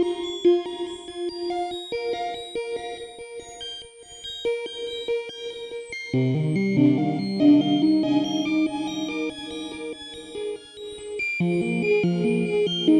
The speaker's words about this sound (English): So yeah, you can kind of get that fever dream sound going. I love this reverb on the Disting.